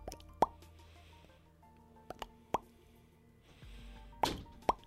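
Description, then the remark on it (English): Sparse water drops plop onto a surface one at a time at irregular intervals, each a sharp, resonant blip standing out against a low, quiet ambient hum. “So as you're standing in this this darkness plane, you can hear the sound of like a drop of water hitting the surface.”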